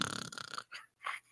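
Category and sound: vocal imitation, voice imitating snoring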